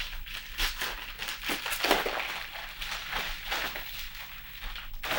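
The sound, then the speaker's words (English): Crisp, irregular crinkling and rustling of a happy birthday foil balloon being handled and cut open, with sharp crackly bursts coming in uneven clusters and no voices. “It's a happy birthday foil balloon for anyone who is wondering. I got to cut this shit.”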